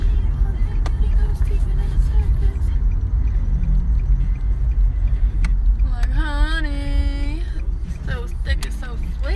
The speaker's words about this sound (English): Oh, here comes a car behind us. Is that a road behind us?